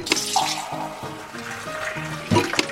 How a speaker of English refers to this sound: The term soda jerk comes from a fountain server needing to pull, or jerk, a small lever in order to pour the soda.